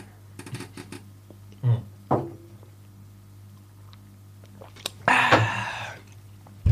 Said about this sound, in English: Don't slurp it in the mic. No. I was saying when I'm talking just now, not doing this sip. I thought you meant letting them hear me sip my liquid.